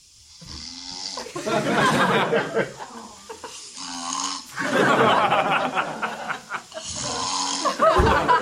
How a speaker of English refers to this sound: Well, because if he's lying in a certain position, he snores really loud, but any other position, he's fine. So I was just trying to like move the pillow a little bit. But this is him snoring.